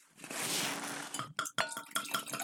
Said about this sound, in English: Heavy sip.